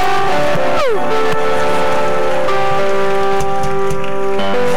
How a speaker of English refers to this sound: Somebody lift up your voice with a clap and a shout of praise. Come on, shout.